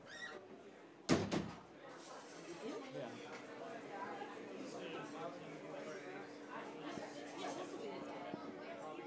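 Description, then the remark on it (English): A door bangs shut once near the start, a sharp knock, followed by a steady murmur of crowd chatter and hum that continues throughout. “This is the door? Yeah. Okay. Door.”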